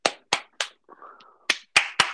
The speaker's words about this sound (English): That is a little bit more clap-worthy. There are three more claps. Three more claps.